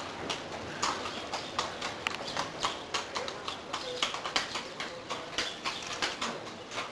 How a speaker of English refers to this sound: Probably hear those horses' hooves on cobblestone. Yeah. Sounds kind of nice.